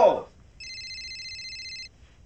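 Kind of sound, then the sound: signal or alarm, phone ringing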